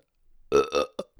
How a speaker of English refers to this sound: I have to burp.